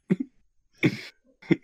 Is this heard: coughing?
yes